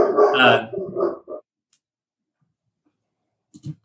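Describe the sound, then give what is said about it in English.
A dog barks in a loud, rapid flurry, then goes quiet for a couple of seconds before one or two short barks return near the end. “So, you know, it's one of those things where he said beforehand that his maid was going to show up and the dog was going to go crazy.”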